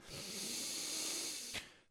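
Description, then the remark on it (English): A long, deep breath in and out, a steady airy rush lasting over a second before ending in a brief, sharper puff of air. “Take a deep breath and let me know how that feels for you. It feels great to me.”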